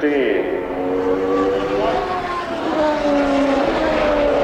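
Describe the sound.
A loud, steady Indy race car engine roars throughout at the 1993 Indy 500, its high whining pitch shifting as it passes on the track, with what sounds like a voice speaking underneath.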